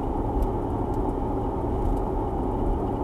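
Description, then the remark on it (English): A steady, low rumbling hum fills the inside of a car, the engine droning evenly and continuously with no talking and no other distinct sounds. “I am currently talking to you from my car.”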